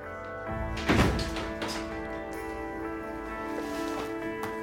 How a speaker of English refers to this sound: Close that door.